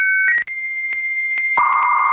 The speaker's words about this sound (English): your kids not knowing the AOL dial-up noise, and that you used to have to get off the internet if you were expecting a phone call because you couldn't do it together. And if you don't know, this was AOL. This is how we used to get online, kids.